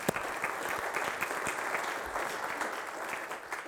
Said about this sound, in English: I do deserve applause for that,